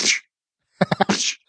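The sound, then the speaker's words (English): A sudden breathy spluttering burst from a speaker accidentally spitting, like a sneeze. After a short silence come a few quick sputtering vocal bursts that trail off into a hiss. “That's how spit actually sounds.”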